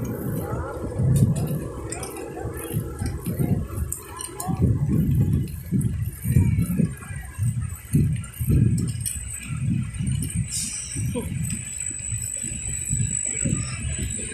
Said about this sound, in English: And in the background, it's just a train moving.